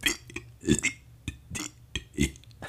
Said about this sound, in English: I can burp the ABCs. Do it, please. I'm not gonna do all of it. Come on. But just give us like a little taste.